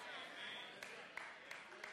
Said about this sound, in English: I got one strong clap from a single man over here.